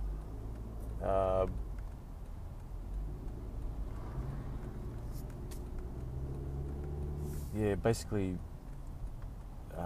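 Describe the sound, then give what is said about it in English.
Steady low rumble of a car moving through road traffic, a constant engine and road drone throughout, with a couple of brief voice sounds breaking through near the start and end. “I'm just in a bit of traffic at the moment, and that's why there's a few gaps in my fluidness.”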